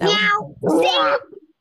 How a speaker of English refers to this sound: I definitely heard the meow.